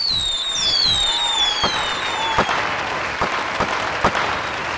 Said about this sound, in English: That's, I count 5 closings this past week for A. Cole Realty and Friends, and I think that deserves, in honor of the upcoming July 4th holiday, 5 firework explosions.